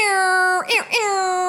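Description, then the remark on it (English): A loud, blaring air horn sounds for about a second and a half, a steady buzzy tone that briefly warbles and dips in the middle before holding again. No one talks over it. “Oh my God, I've always wanted to do my air horn.”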